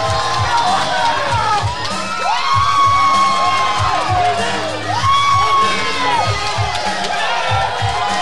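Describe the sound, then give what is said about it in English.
A loud crowd cheers and shouts continuously for the Sexy Angels, with high whoops and rising yells rippling through a dense roar, over a steady low rhythmic thumping beneath. “The crowd is lit for the Sexy Angels.”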